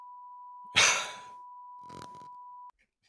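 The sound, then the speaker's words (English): A steady, unbroken electronic beep from a soundboard button holds one pitch for nearly three seconds, then cuts off abruptly. A loud breathy exhale and a softer rustle briefly sound over it. “And that's I was about to say it, and it should be beeping.”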